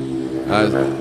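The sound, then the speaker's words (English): A motorcycle passes by, its engine a steady low droning hum that swells briefly to a louder, rougher roar midway through the short clip before easing back. “Let's motorcycle go by.”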